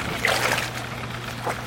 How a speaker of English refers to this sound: If this was, like, producing this for some radio programme or something like that, I would, of course, now provide some ambience, so I would insert the sound of a splash, so I shall do that.